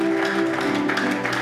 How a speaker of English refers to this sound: Give the Lord a good clap offering, somebody.